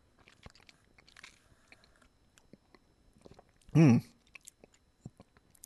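Soft wet mouth noises as someone sips a mint Shamrock Shake milkshake, followed by one brief, loud, throaty burst near the end, then quiet clicks again.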